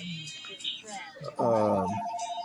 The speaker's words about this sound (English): Sorry about that. Hold on. Okay, that's the house phone that you hear.